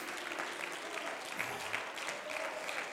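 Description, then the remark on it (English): A crowd claps hands unto the Lord in a dense, sustained burst of applause that continues steadily for the whole stretch, with no individual voices standing out. “Somebody clap your hands unto the Lord.”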